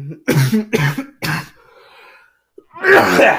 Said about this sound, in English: excuse me, I'm still coming over a cold. Battling a cold, so I do apologize for randomly coughing.